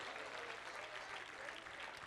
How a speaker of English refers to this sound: Clap your hands and give God some glory.